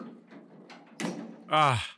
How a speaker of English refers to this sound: The door is unlocked and my handcuffs just opened.